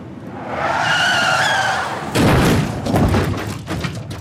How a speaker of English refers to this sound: On September 30th, 1955, in Shalami, California at 6 p.m., Dean was in fact frozen in time. Donald Turnipseed turned into oncoming traffic, causing a head-on collision with Dean's 550 Porsche Spyder, the little bastard.